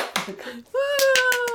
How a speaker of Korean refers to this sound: 짜란, 여기 음향 효과 좀 넣어주세요. 박수!